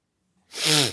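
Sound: repeated sneezing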